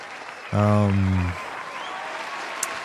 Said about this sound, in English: Let that applause ride off.